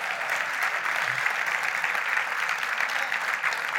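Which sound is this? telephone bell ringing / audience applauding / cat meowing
audience applauding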